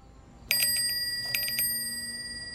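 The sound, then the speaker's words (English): A bicycle bell rings twice in quick succession as it passes by a house, each ring a rapid cluster of bright metallic dings, with a clear shimmering tone that lingers and slowly fades in a quiet setting. “That night, about an hour after Lucy heard the bell pass by her house”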